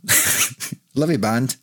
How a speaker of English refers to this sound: Bless you.